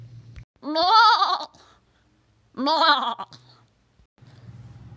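A goat bleats twice, loud, each call a wavering, nasal cry about a second long with a short pause between them, over a faint low hum.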